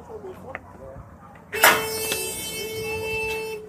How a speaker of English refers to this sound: Lovely sound of a turnstile. And there we are. I'm in.